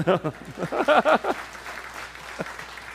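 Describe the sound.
An audience breaks into scattered applause, with voices calling out loudly over the first second before the clapping carries on as a steady, moderate patter.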